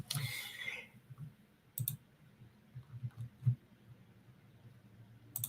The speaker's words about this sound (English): Another drink from my paper cup with no lid. It's cold now.